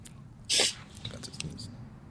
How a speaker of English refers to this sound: Sorry, I was about to sneeze.